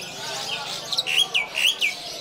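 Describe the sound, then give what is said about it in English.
A champion competition songbird, owned for four years, sings a run of bright, rapid chirps and whistled notes, about five distinct phrases in quick succession, clear over a soft background hiss. “And how much is your bird worth having won so many competitions?”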